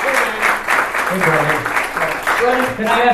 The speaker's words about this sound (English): This is Brendon Walsh, everybody. A round of applause for Brendon Walsh.